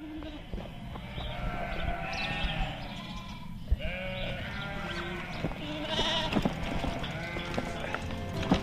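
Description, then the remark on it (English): Dubbed-in sheep sound effects: a flock of sheep bleats continuously, with many overlapping wavering calls at moderate volume over a steady background murmur, like a busy farmyard pen. “just dub on some sort of sheep sound effects afterwards to make it sound like we're in the middle of a farmyard.”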